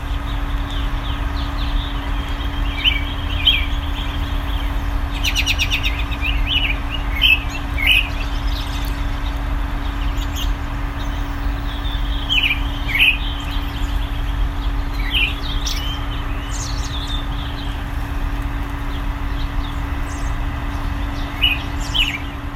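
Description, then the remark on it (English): Robins sing from a tree in early February in Bloomington, Indiana, bright, repeated chirping phrases over a steady low background hum and rumble, with no voices. “You've been listening to Robins in a Tree, early February, in Bloomington, Indiana.”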